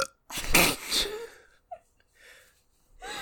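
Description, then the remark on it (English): A short, breathy burp, more of a weak airy belch than a deep rumble, followed by a couple of faint mouth noises and quiet breaths. “That was a bad burp.”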